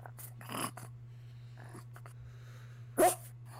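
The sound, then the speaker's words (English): One sharp, loud bark bursts out near the end over a steady low electrical hum, with a few softer snuffling noises earlier. No one speaks. “Why is it barking?”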